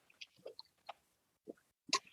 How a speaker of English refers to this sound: First sip, pretty solid. I'm trying to, yeah, it's definitely like your kind of beer, like a hazy IPA. Hazy IPA.